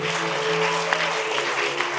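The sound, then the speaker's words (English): An audience at a church service claps steadily, a dense, continuous patter of many hands at an even loudness, with a faint sustained tonal hum underneath and no one speaking. “Yeah, you can clap.”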